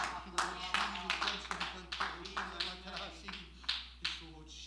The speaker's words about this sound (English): Thank you, Lord God. Let's all clap our hands unto the Lord.